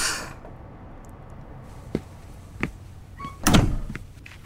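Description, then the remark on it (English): A door opening: a couple of sharp latch clicks, a faint squeak, then a heavier thud as it swings, with no talking. “Annika, we're waking people up. Open the door.”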